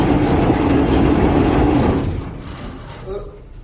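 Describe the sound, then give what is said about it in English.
An engine that has not run for a couple of weeks cranks over as people try to start it, with a loud, steady churning drone and a low humming tone for about two seconds, then the noise drops away to a quieter rumble without catching. “We're just trying to get it started because it hasn't run for a couple weeks now.”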